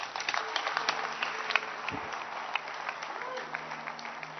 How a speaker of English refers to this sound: Clap your hands.